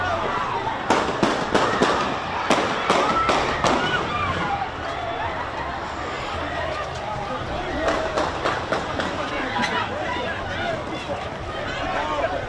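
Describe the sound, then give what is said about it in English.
Rapid volleys of sharp gunshots crack out in two clusters over a constant murmur of a crowd with people talking and shouting, as shots are fired during celebrations in Milwaukee after the Bucks won the NBA championship. “preferably away from the gunfire”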